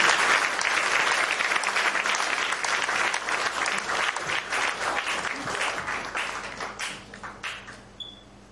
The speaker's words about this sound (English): I think it's a good point to clap for the Lord.